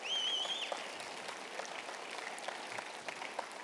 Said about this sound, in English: That deserves a clap and a shout to God. Come on.